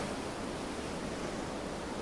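A steady, unbroken rush of ocean surf mixed with wind, filling the space evenly at a moderate level with no distinct wave crashes and no voices.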